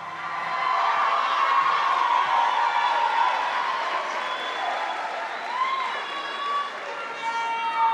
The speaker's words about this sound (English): The crowd is going wild.